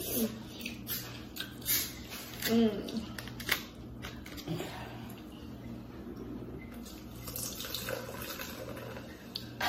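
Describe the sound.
Sauce steadily pours and splashes onto seafood for several seconds, a continuous wet trickle with small clatters, and a brief murmur of voice partway through.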